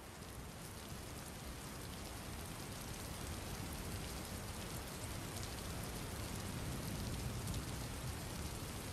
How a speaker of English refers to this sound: From here, you notice that the rain slowly begins to become not only heavier, but you begin to hear the sounds of thunder.